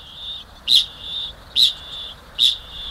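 A kakapo, a flightless New Zealand parrot, calls with three sharp, high chirps at an even, unhurried pace over a steady, shrill high-pitched tone, clear, with no voices.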